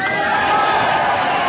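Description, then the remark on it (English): A large crowd of thousands at the Dodge City station in Kansas roars and cheers its welcome as Errol Flynn steps to the microphone, a steady, dense wash of sound, loud and sustained throughout with no breaks or individual voices standing out. “The crowd roars its welcome as Errol Flynn steps to the microphone.”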